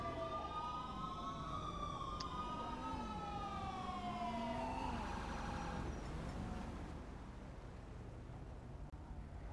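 A wailing ambulance siren sweeps up and down in pitch over a steady engine rumble, loud at first, then fading away toward the end.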